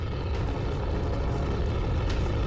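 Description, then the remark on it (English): A jet roars overhead in a steady, continuous rumble, heavy in the low end with a faint hiss on top. It holds even for the whole stretch, with no voices. “And as this happens, you hear what sounds almost like a jet flying over.”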